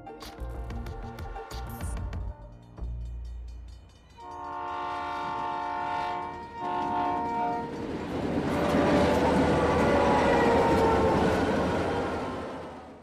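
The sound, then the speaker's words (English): A Mumbai local commuter train sounds a long, loud multi-tone horn as it approaches, then rumbles past with a swelling, roaring wash of wheel and carriage noise; no voices. “Mumbai local train is the backbone of Mumbai cars.”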